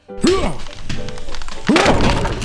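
A wooden chair cracks and collapses under the weight of a walrus in two loud, crunching thuds about a second and a half apart, each with a strained, rising-and-falling groan over the splintering noise.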